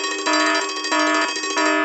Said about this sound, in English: That is... Minutia alarm.